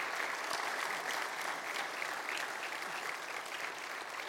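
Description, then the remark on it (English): Steady audience applause as the audience gives themselves a hand fills the whole clip, a dense, even wash of many hands clapping at a constant loud level with no voices standing out. “Would you give yourselves a hand of applause”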